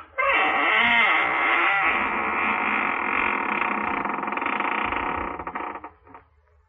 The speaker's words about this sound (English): Welcome, friends of the Inner Sanctum. This is your host, Raymond, inviting you to come in through the squeaking door and catch your breath.